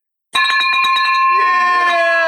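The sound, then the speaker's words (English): A victory bell is rung rapidly and loudly in an office, a quick burst of about eight bright clangs, its ringing tone lingering as a voice begins talking over it. “Victory bell, $300,000 for the year so far.”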